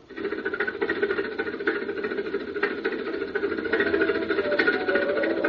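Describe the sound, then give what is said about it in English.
A steady mechanical engine drone as it hoists a stone slab weighing about 70 tons in the desert at sunset, a dense humming rumble with faint rhythmic chugging and no breaks, holding at a constant moderate loudness throughout. “Glad we got the engine. That slab weighs about 70 tons.”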